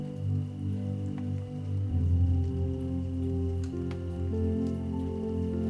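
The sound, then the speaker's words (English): Gentle raindrops patter softly and steadily, with a few distinct drips standing out, layered over a low, continuous humming drone. No one speaks. “Tonight, let the rhythmic sounds of gentle raindrops lull you into deep, peaceful sleep.”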